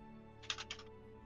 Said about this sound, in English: Furious typing.